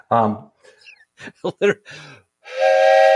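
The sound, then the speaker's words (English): A railroad train whistle marked Stroudsburg Railroad gives one loud, breathy, steady blast at the end, following a few moments of people talking. “It says Stroudsburg Railroad on it.”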